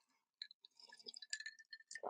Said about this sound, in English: Let me take a sip of my kombucha, my morning kombucha.